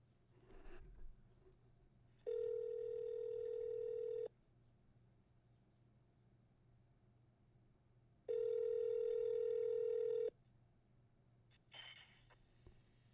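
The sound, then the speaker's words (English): A telephone line tone sounds in two long, steady electronic beeps, each about two seconds, separated by a pause of silence, with faint clicks at the start and end and no talking, while a dropped call is being redialed. “His phone dropped.”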